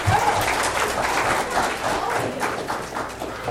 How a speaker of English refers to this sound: Man, get the kids a round of applause again.